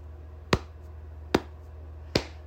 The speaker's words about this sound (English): But a universally recognized sound is the grandpa knee slap. And that is what I'm going to give to these grandpas right now.